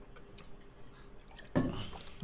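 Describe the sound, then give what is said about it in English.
Soft mouth and liquid sounds, with a louder wet gulp about two-thirds through, as someone drinks water. No one speaks. “I'm drinking water.”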